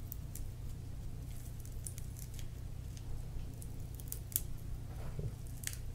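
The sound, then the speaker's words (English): Crinkling and small sharp clicks as a pop-up flavor capsule in a King Palm rolling paper is squeezed and popped, scattered irregularly over a steady low electrical hum, with no one talking. “So I guess there's a ball and you pop and the flavor comes out.”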